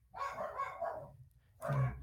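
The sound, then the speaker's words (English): Dogs bark in a couple of quick bursts, a run of yelping barks followed by a short pause and another outburst, sounding fairly muffled. “I'm going to deal with my dogs real quick.”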